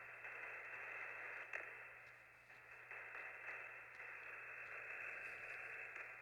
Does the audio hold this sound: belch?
no